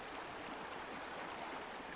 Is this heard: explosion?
no